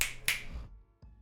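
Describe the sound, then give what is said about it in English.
Two crisp, bright finger snaps in quick succession, then a softer third snap after a short pause, with no one talking. “Don't snap your fingers, bro.”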